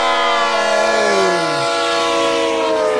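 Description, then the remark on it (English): A loud, blaring train-horn alert sound effect signalling a hype train: several layered tones held steady for about three seconds, with one pitch sliding downward partway through. No voices. “There goes the hype train, people.”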